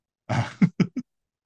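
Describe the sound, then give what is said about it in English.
A raspy cough from a person with chest pain on the right side: one longer rough burst followed by three short, diminishing hacks in quick succession, with no talking. “I just coughed and I'm dealing with some chest pain on the right side of my chest, so that made coughing even more unbearable.”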